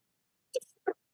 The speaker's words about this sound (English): Oh, I got to sneeze.